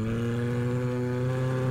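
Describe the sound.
A voice imitates a female bear roaring loudly into someone's ear: one sustained, low, buzzing growl that holds a steady pitch and full volume for nearly two seconds.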